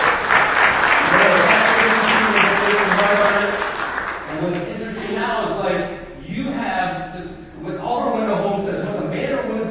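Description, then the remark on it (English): An audience at a Skill Building Summit breaks into a loud round of applause for the Canadian Real Estate Association for developing the very first Amazon skill, dense steady clapping for about four seconds that thins out as a voice begins speaking over the fading claps. “And big round of applause for the Canadian Real Estate Association for developing the very first Amazon West skill.”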